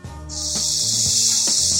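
A rain stick is played, its steady, high rushing hiss starting after a brief pause and continuing evenly, with faint low tones humming underneath and no one speaking.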